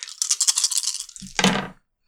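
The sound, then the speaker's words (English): Six dice, rolled as hope dice in a game, rattle and shake for about a second, then clatter onto a hard surface in a short burst before falling silent. “So roll my hope dice, which is 6 dice.”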